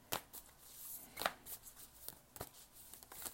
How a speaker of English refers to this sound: These cards are like heart-shaped cards, and they're really big and hard to shuffle.